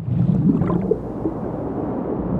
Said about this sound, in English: They started with a recording of the Colorado River.